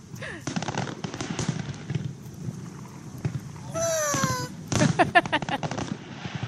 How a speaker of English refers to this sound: I do like fireworks.